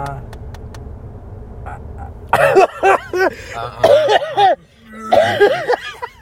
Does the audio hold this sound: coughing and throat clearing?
yes